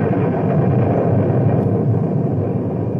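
thunder crash

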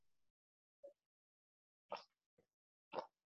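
sipping water

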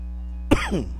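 cough

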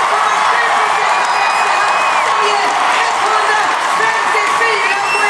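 crowd cheering

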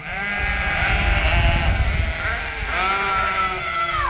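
sheep bleating

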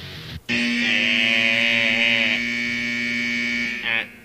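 buzzer sound effect

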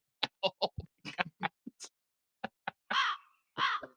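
crows cawing

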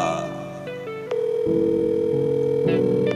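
telephone ringing

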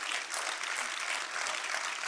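audience clapping hands

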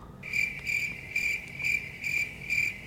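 cricket chirping sound effect

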